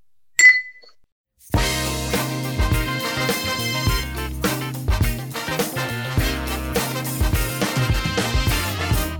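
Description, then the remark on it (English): A single bright clink of beer glasses touching in a toast to Abita strawberry lager, ringing briefly, then a short pause before upbeat music with a steady bass and drum groove starts and carries on. “Yeah, cheers to Abita and their strawberry lager.”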